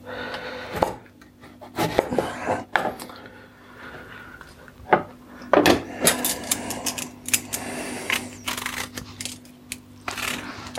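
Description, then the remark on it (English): A knife cuts a couple of bits off a mostly whole pear on a wooden board: irregular sharp taps and knocks, some in quick clusters, with brief scraping between them and a faint steady hum underneath. “So this one looks like it's pretty much whole. A couple of bits to cut off it.”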